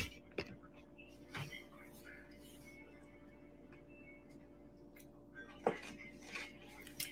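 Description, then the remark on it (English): A few sharp, crisp crunches of someone biting into peppers, spaced irregularly over a quiet, steady background hum. “Hear that crunch? That's from the peppers.”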